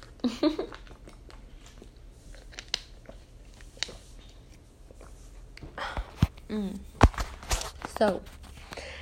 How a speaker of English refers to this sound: Hold on, I'm going to drink water. Y'all hear me getting all nasty.